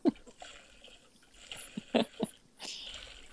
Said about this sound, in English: That's just the water coming out. That's a gallon of water. As he vomits out the water